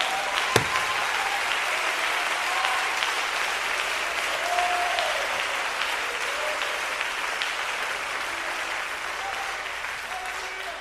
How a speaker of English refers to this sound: Clap your hands hard and shout.